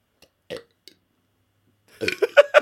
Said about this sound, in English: Wait, I was going to burp, which is why I took a pause there.